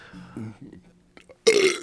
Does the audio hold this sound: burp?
yes